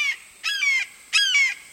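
A male limpkin, a relatively tall bird with dark brown feathers streaked with white, awakens and gives two loud, harsh wailing calls, each about half a second long, with rich ringing harmonics and a brief pause between them, with no one talking.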